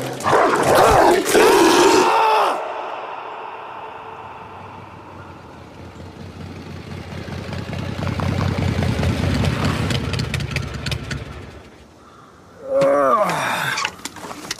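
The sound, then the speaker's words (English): A dog barks and snarls loudly in an aggressive burst, falls silent under a low rumbling hum, then erupts into barking again near the end. “That is a manger dog.”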